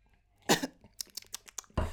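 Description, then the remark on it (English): Someone clears their throat: a short, rough rasp, a patter of small clicky mouth sounds, then a second harsh burst. No talking. “You got a clear throat. have a sip, sweetie.”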